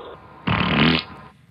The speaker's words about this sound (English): That is a combination of about ridiculous. 7 or 8 of you idiots that sent us just fart drops.